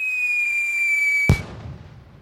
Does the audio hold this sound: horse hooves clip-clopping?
no